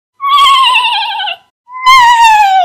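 Two loud horse whinnies in quick succession, each a long quavering call that slides downward in pitch, separated by a brief pause; the horses are excited that spring has come.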